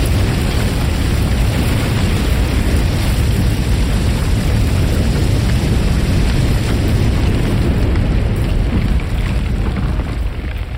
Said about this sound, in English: The timber splintered, and rock came crashing down until the tunnel was sealed. Echoes of crumbling rock and falling gravel continued afterwards.